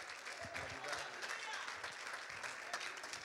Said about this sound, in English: We can give the Lord a great big hand clap today